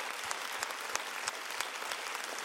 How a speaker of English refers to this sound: Church, across all of our campuses, can we clap it up for our amazing speakers this morning? Yes.